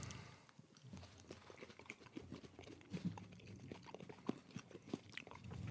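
Wet chewing and crunching of a sweet, fruity candy being chewed up fast, a quick run of bites and mastication sounds repeating irregularly, with no talking over it.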